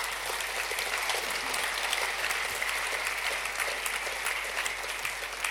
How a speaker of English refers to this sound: Why don't you give them a big round of applause?